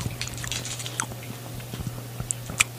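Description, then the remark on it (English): Wet chewing of candy with soft crunchy clicks and squishy bites repeating irregularly, alone with no talking and a low steady hum underneath. “So that'd be good chewing.”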